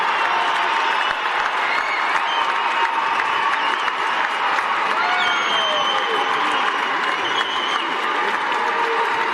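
A BYU basketball arena crowd, called on by player Yoli Childs during a timeout with 3:44 to go and BYU up 68-51, claps and cheers in a steady, loud roar of applause that holds for the whole stretch, with scattered shouts and whistles riding on top.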